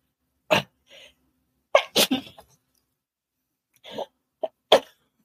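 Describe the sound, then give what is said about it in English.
A person coughs and sneezes several times in a loud series of sharp bursts, with brief breathy pauses and sniffs between them, no talking. “Oh, excuse me, coughing and sneezing.”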